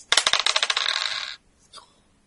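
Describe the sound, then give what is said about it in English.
A D8 and a D10 dice, rolled for a piloting roll in a game, rattle and clatter across a surface in a quick burst of sharp clicks lasting just over a second, followed by a faint brief knock. No one speaks. “Okay, make a piloting roll.”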